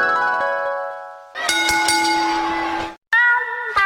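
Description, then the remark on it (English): A loud train horn sound effect, played from a studio soundboard, blares in three sustained, chord-like blasts, with a brief break before the last. No one talks over it. “Come get on the... train.”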